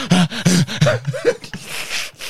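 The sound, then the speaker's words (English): A voice imitates heavy panting while running laps: a quick run of loud, voiced huffing breaths in a steady rhythm, trailing off into longer breathy exhales, alone. “And you know you're panting the way you're riding.”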